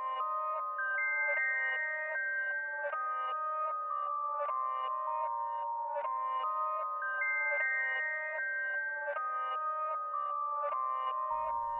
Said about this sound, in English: The chimes of Carmen, Ohio are beautiful. Win or lose, they ring after every game